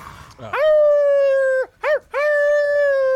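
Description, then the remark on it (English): A loud howl, apparently voiced by a person imitating a creature, one of a group of seven that hangs back and keeps howling: a long rising-then-steady wail, a brief wavering yelp, then another sustained howl, with no other talk. “One of the 7 does not go to attack Robbie, though, and hangs back and continues to howl”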